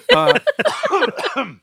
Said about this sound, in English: I pretended to be old and it made me cough. This is bad.